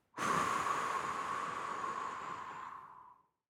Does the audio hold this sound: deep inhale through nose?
yes